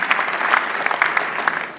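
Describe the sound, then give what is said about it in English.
A crowd claps steadily and loudly as a clap offering to Jesus after a testimony of healing, a dense wash of many hands with scattered sharper claps standing out, sustained throughout with no voices on top. “Give a mighty clap offering unto Jesus for this great intervention.”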